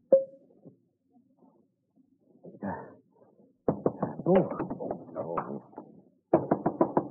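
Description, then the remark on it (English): A dressing-room door lock clicks and a bolt slides shut with a brief metallic scrape, then rapid, insistent knocking pounds on the door in loud bursts. “You hurry over and lock the door, then go to the closet.”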